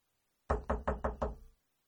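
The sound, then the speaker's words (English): A phone is banged against a table five times in quick, even succession, loud hollow thuds, then a brief pause before one more knock starts at the end; the phone is being knocked to bring back a call that went dead. No voices. “She'd be banging it on a table or something, and all of a sudden she'd come back on.”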